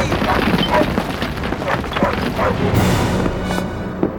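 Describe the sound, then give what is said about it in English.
A dog, Shadow, barks in short bursts near cliffs over a dense, continuous rumbling roar of a slide its barking has set off, with shouting voices faintly mixed in. “Shadow's barking is causing a slide.”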